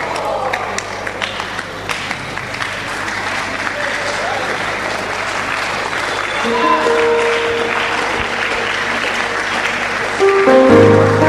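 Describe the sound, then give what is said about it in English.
An audience claps in a dense, continuous patter of many hands that swells slightly louder toward the end, with faint voices and sustained tones mixed underneath. “If you are clapping because God has spoken to you, then clap better.”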